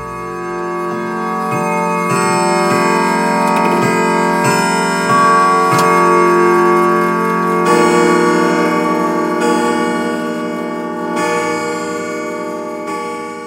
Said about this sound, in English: So turn out the lights, draw the shades, cuddle up in your favorite blanket by the speaker, and listen for those 12 bells as we discuss tonight's watch.